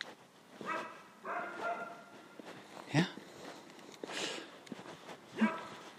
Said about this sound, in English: It's only a dog.